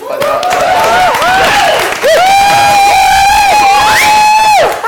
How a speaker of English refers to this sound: Good noise there, by the way, everybody. Thank you in the crowd.